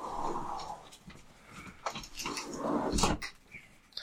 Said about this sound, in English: Dog need to go outside.